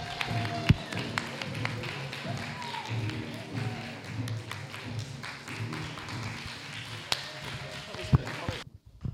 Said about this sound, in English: You can start clapping right now for the gentleman we all came out and made us come out here.